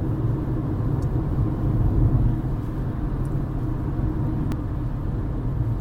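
A steady low rumble of a car engine and road noise while driving, continuous and fairly loud, with a few faint brief clicks on top and no voices.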